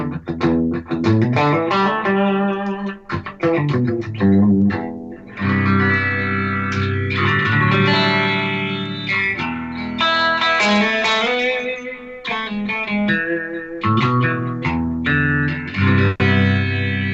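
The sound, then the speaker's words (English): An electric guitar plays a loud, continuous melodic phrase with repeating delayed echoes trailing each note, the sustained tones washing together with reverb and slight distortion, no voices present. “And then you can do, you know, really, real long delays like a”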